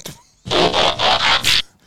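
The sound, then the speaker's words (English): A voice imitates a robot's mechanical transforming sound: a loud, gritty burst of four quick rhythmic whirring pulses lasting about a second, heard on its own with no talking. “Yeah, I'm just transforming them.”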